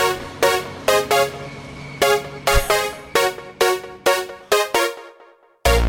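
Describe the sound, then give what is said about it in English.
A playful children's song about trucks, built from a rhythmic run of loud, bright horn-like toots, about ten in quick succession, with no voices, ending abruptly. “I'm listening to kids' music.”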